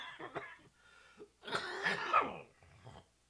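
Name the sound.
coughing fit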